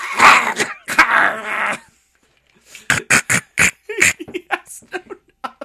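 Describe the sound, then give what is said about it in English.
A tiny creature sleeping at night breathes in through its sealed nose with loud, choking snorts: two long raspy, gurgling pulls of air, a brief pause, then a rapid string of short snuffling snorts. “It's him trying to breathe in through his sealed nose.”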